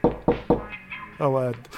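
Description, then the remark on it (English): Three quick, evenly spaced, sharp knocks on an office door, followed a moment later by a brief, high meow-like cry. “Somebody's knocking on the office door here.”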